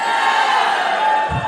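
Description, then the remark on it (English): A large live audience at CrimeCon cheers and whoops in a steady, loud wash of voices that fills the whole moment, with a low thump near the end. “You guys are not nearly as loud as the last crowd.”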